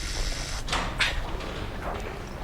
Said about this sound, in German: Ich drücke auf den Summer. Ihr müsst die Tür kräftig aufstoßen. Sie klemmt etwas.